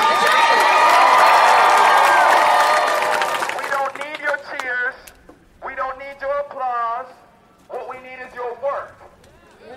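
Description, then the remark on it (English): A loud burst of crowd applause and cheering fills the first few seconds, then fades as a single voice begins speaking over quiet background. “So we don't need your applause.”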